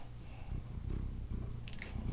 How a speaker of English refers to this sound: I can hear him purring. Good boy.